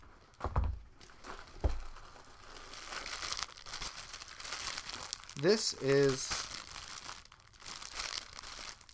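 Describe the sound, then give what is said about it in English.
Loud crinkling and rustling of a plastic bag being handled and opened, with sharp crackly bursts throughout and a brief spoken phrase partway through. Inside the plastic bag is a fabric-looking pouch with flowers on it. “Okay, it's a plastic bag, but in the plastic bag is another bag that looks like it's made of fabric.”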